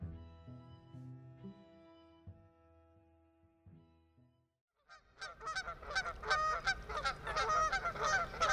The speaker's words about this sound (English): That might be a familiar spring sound to some. Is that a goose call?